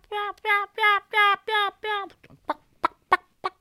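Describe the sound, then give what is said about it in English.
A high-pitched, loud-calling hen turkey calls: six loud, evenly spaced yelps in quick succession, followed by a handful of sharp, short clucks, with no voices present. “And then finally, there's this high-pitched, big mouth hen.”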